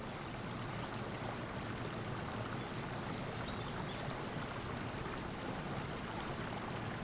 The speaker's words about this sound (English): Why not take a few steps out onto the bridge and take a look downstream at the River Aire as it flows towards Saltaire?